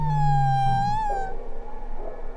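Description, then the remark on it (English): A whale in an icy fjord, reacting to singing from a boat, vocalizes with a long, deep moaning call, a steady low drone beneath a sustained harmonic tone that wavers slightly for over a second before fading into faint background noise. “And then the first whale is reacting. And it's like this really deep sound.”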